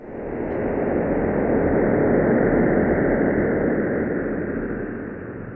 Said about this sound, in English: And there was a sonification, turning the image the EHT collected into sound. I want to play a selection of that and have you tell us what we're hearing.